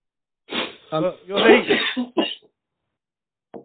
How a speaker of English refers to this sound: Coughing up my lung.